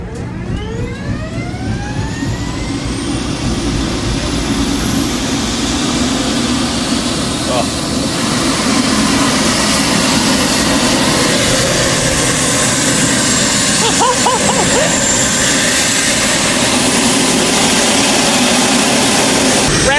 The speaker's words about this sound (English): It's about 20 seconds long. This is the warm up of a Blue Angel jet.